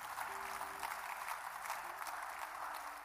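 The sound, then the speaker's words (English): An audience claps hands in praise of Jesus in a steady, dense wash of applause lasting the whole moment, with a faint low hum of voices or instruments underneath. “Come on, somebody clap your hands and praise Jesus.”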